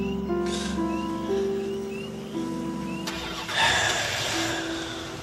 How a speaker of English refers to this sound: Jack, start the truck.